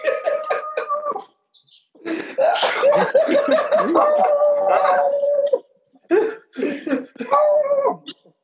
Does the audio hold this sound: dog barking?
yes